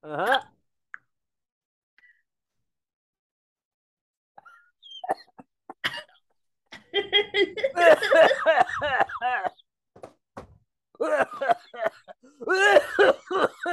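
coughing fit

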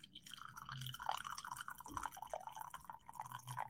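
coffee being poured

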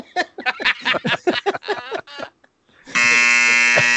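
buzzer

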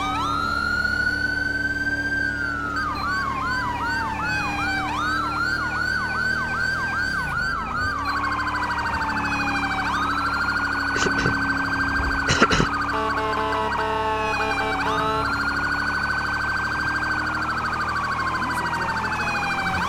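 police car siren

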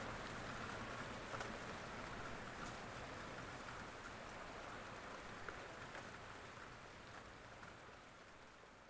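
gentle rain falling

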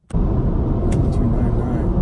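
car interior road noise

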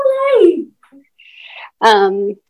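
dog whining

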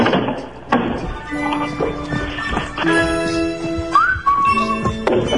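person whistling a tune

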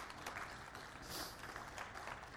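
applause

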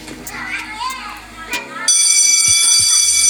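bell ringing

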